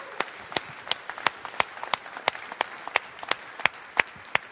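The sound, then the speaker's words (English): A roomful of people applauds with steady, fairly sparse claps, some sharper strokes standing out, with no talking over it. “Let's clap, guys.”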